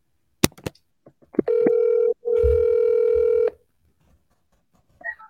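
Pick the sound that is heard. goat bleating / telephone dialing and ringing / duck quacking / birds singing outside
telephone dialing and ringing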